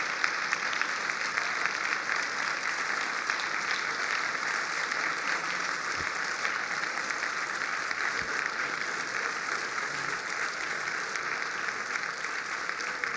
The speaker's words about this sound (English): Please stand. Let's give them a big hand. Let's cheer them on. I'm sure there are more.